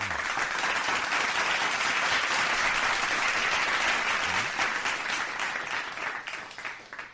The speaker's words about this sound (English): So let's give Biff a round of applause for the coffee. Come on.